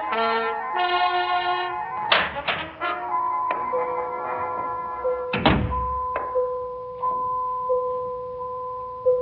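A door is opened: a drawn-out, tonal creak of hinges punctuated by a few sharp knocks and one heavy thump midway, with no voices.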